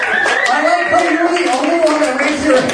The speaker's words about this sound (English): Then give yourself a round of applause for showing up on a Wednesday night and supporting live comedy.